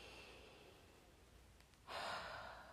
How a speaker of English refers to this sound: Just like that feeling of just like, to me, again, I always say it's like, I'm just breathing in the goodness of God, the goodness of God, breathing it in.